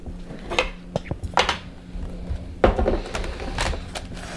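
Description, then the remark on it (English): Someone fetches a knife and cutting board to cut an avocado: a handful of irregular knocks, clinks and clatters like a drawer or cupboard and utensils being handled, with no talking. “So let me get a knife and a cutting board.”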